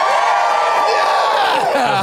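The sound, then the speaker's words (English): A crowd of airplane passengers who have just got off a plane cheers and whoops together, a loud, sustained burst of many overlapping voices shouting at once for a couple of seconds. “Now give me a cheer if you did it.”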